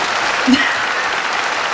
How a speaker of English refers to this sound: I have an alternative version. This one's called the posh applause.